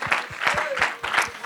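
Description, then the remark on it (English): An audience at a worship service claps hands together in praise in a steady, rhythmic beat, roughly three claps a second, loud and continuous with a faint murmur of voices underneath. “Why don't you one more time give him a hand clap of praise as a confirmation.”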